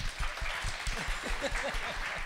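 A crowd breaks into a steady round of applause, dense clapping that fills the whole clip at an even, fairly loud level, with a few indistinct voices mixed in underneath.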